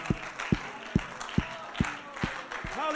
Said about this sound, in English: If you can give the Lord a good hand clap of praise before we're seated.